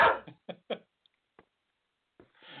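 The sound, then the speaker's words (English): A dog named Louie barks in a quick run of four sharp yaps, the first loudest, followed by near silence with a couple of faint ticks and a soft rustle at the end. “And good afternoon, and Louie brings us into the show here.”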